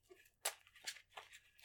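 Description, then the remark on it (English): A card deck containing 22 basic Swamp cards from Battle for Zendikar being shuffled: four quick, crisp papery riffles in a steady rhythm, fairly quiet, with no talking. “Alright, so I'm going to shuffle up the deck.”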